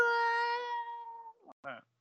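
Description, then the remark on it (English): Someone vocally imitates a TIE Fighter flying past the camera with a long, steady, buzzy whine held for over a second, fairly loud, followed by two brief voiced bursts. “If they ever need more sound effects for a TIE Fighter in Star Wars film, I should get you to do it.”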